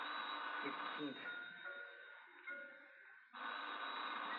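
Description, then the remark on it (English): A telephone rings with a loud, harsh, continuous metallic jangle, breaks off briefly while faint voices murmur, then starts ringing again just as loudly. “I know it's the phone.”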